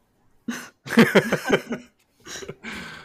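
A loud sneeze: a sharp noisy burst with a voiced catch, followed by a couple of shorter breathy gasps and exhales, with no talking.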